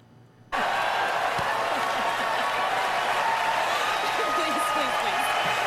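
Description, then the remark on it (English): Sustained applause from a large audience of women, clapping for a person on stage, begins abruptly after a brief quiet moment: a dense, steady wash of clapping with scattered cheers and whoops rising above it, loud and unbroken to the end. “A bunch of stupid women clapping at another stupid person on stage.”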